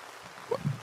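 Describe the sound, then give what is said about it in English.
Faint, steady patter of rain falling outside, a soft hiss with a couple of slightly louder drips near the end of the short snippet. “No, it's raining.”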